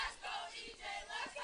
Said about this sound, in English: Can hear cheers from the dugouts.